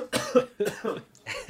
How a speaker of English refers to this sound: Yeah, I'm going to have a glass of water. I'm sorry. It's just that... I had this cold, and the talking has been making it worse. Okay, drink some water, stop coughing, and then I'll start talking again.